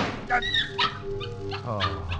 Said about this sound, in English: A dog. Only a dog. Yes, it's only a dog.